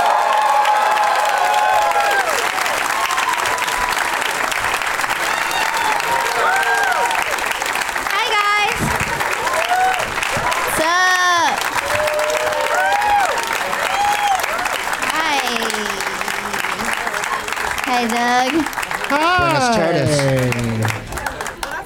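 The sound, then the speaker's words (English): An audience at a show in San Francisco bursts into sustained, loud applause with whoops and cheers rising over dense clapping as guests Chad Opitz, Amy Miller and Greg Proops are introduced, continuing steadily for about twenty seconds before beginning to fade. “Please give it up for my friends Chad Opitz, Amy Miller, and Greg Proops.”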